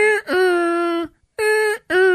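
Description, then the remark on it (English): A voice imitates an alarm with three steady, buzzy, mid-pitched tones: one long held note followed by two shorter bursts, separated by brief pauses, with no other sounds. “Well, I guess were there two alarms? Because I remember there was the one that went...”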